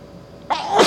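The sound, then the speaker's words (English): A single sharp sneeze bursts out after a half-second of quiet, loud, with a breathy, hissing explosion that grows stronger toward the end. “Bless you. Turn off the fan, no?”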